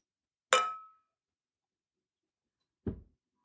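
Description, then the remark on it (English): Cocktail glasses clink once in a toast, a bright chime that rings briefly before fading, followed a couple of seconds later by a softer, duller tap. No one speaks. “So, all right. Cheers. Cheers to Sarah.”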